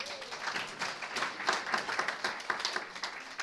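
An audience applauds steadily, a dense crackle of many hands clapping at a moderate, even level for a few seconds with no voices over it.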